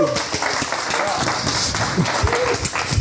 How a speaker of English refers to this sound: So without any further ado, please put your hands together and give a massive round of applause